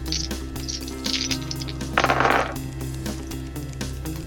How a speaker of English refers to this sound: The next team had 2 extra dice. And their leader is rolling all of the dice. This is a Ferengi team.